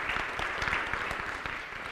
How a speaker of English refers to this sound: This is InterVarsity. Give him a hand clap.